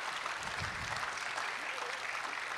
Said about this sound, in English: happy Mother's Day to all the women out here. One round of applause for all the moms. Let's give it up.